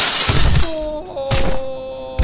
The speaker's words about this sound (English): He took Paul's proffered hand and threw him through the plate glass window.